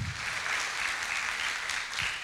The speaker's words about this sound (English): Welcome to Passion Life Church. Let's give Jesus the best round of applause that we're going to give him all day, because he's worthy.